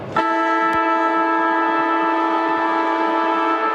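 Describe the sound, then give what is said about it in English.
A loud, steady stadium siren blares continuously for three quarter time at the qualifying final between Sturt and the Adelaide Crows, starting abruptly and holding one sustained, harmonically rich tone without wavering. “Siren sounds for three quarter time.”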